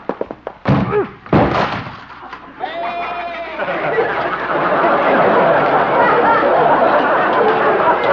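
A couple of heavy wooden thuds and a splintering crash as a goat rams into Doc's door in the show Honest Harold, followed by a swelling wash of audience laughter and chatter.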